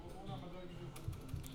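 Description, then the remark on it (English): Casino ambience aboard a Grimaldi Lines ferry between Barcelona and Civitavecchia, with a steady murmur of voices, sustained electronic machine tones, and scattered sharp clicks and taps, all at a low, even level. “Field Recording Nr. 2 - Casino (On Board the Grimaldi Lines, Barcelona/Civitavec”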